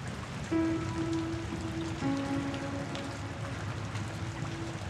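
Steady rain falls with a dense, even hiss, while a low droning hum with faint overtones sits beneath it, shifting pitch slightly partway through. No one speaks.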